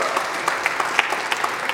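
An audience claps together in a steady, dense patter of many hands, fairly close and moderately loud, with no voices over it.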